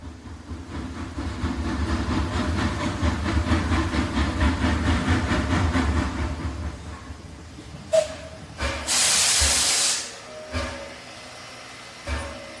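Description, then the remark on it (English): A steam locomotive train arrives at a station, rumbling in with a steady, rhythmic chugging that fades, then a loud burst of hissing steam erupts, followed by a few short metallic clanks and softer hisses. “While its steam locomotive and old-fashioned, well, fashion, make it look a bit quaint by modern standards”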